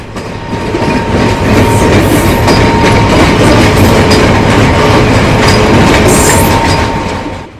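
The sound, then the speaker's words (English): A train rumbles past on railroad tracks, loud, with a steady clattering of wheels and a faint metallic squeal, swelling in and easing off over several seconds. “The whole place shaking like it had the palsy every time a train went by.”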